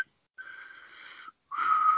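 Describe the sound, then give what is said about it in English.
Two breathy, airy whistles drawn inward, a wavering steady tone around one pitch with lots of hiss, the second rising slightly and louder; unsteady, like a weak sucked-in whistle. “I can like inward whistle like really badly, like.”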